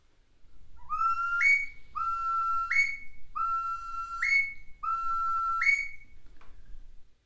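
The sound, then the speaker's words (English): A bird-call whistle imitates a curlew: four loud, rising whistled calls in steady succession, each swooping upward and ending in a brief trill, clear with no talking. “So this is the curlew, which is quite popular, very sort of on the Irish coast and Welsh coast.”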